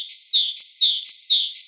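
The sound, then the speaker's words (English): A forest songbird sings a quick, repeating phrase of high, thin notes alternating with slurred whistles, three cycles in under two seconds, clear with no other sounds. “Once again, the forest bird.”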